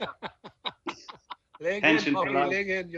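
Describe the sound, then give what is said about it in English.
A person imitates a clucking laying hen: a quick run of short, sharp clucks, then a loud, drawn-out squawking cackle, with no other talking. “Laying hen.”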